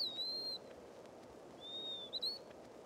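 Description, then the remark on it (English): Veery song: two breathy, flutelike whistled phrases, one near the start and one later, ringing fairly softly over a steady hiss of outdoor background noise. “During the song of the wood peewee, I heard in the background the unmistakable voice of the veery, not once, but several times.”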